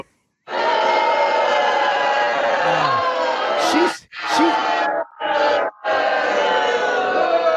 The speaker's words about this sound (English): Babe, just so you know, the live studio audience is booing you right now.